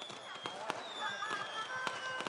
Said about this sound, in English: Firecrackers during Chinese New Year festivities reminded her of street fairs back in Mexico.